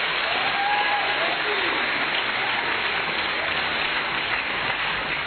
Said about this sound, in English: And I think it's a good place to clap your hands.